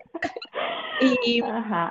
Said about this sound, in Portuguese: Ah, é um gato, ok.